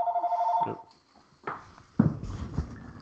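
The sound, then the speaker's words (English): A house phone rings with a steady electronic trill at the start, then cuts off as loud, rough bursts of household commotion follow. “Everyone in our house gets to, everyone in our live on our podcast gets to say, this is what happens when the phone rings at my house.”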